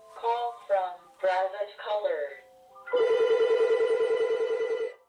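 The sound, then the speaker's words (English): A telephone bell rings loud in one sustained, rapidly trilling burst lasting about two seconds, a surprise call from the FBI to an EPA scientist in Maryland in the afternoon, preceded by a few short, voice-like warbling sounds. “gets a surprise phone call from the FBI.”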